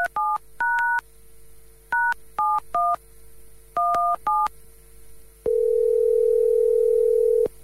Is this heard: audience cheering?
no